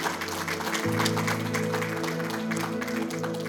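A church audience claps as a praise offering to the Lord in a dense, continuous burst of applause, steady and loud throughout, while a sustained low keyboard chord holds underneath and shifts once early on.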